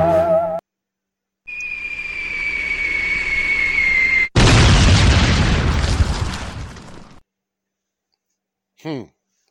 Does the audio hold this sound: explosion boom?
yes